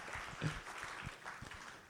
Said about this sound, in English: Ladies and gentlemen, would you give a round of applause for